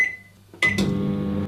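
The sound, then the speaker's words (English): A fading electronic beep, then a couple of sharp clunks give way to the steady, droning hum of a microwave oven running, with no voices. “Corn, dehydrated, then put in a microwave to literally pop.”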